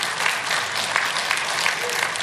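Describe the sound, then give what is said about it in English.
An audience breaks into steady applause, a dense, even wash of many hands clapping at a constant loudness with no voices standing out. “So again, that's something to cheer about.”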